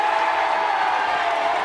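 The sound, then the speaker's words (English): A dense wash of crowd noise roars steadily throughout, the broad cheering and applause of a large stadium audience at a football game as a squirrel runs down the field, sounding loud and continuous without any clear break. “The crowd is going crazy.”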